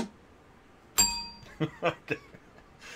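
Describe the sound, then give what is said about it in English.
A single muted bell strike, given to Carlos Braxton of ACB Logistics, rings out with a brief, damped metallic tone that fades quickly, followed by a few soft knocks and clatters against a quiet background. “Carlos gets a muted bell.”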